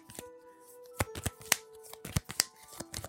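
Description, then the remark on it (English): Trading cards in Dragon Shield matte art sleeves (Water Dragon 2022) being hand shuffled, a quick series of crisp slapping clicks and plasticky riffles in an uneven rhythm, with no one talking. “You can hear that great hand shuffle.”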